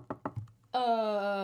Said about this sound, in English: Knock on wood.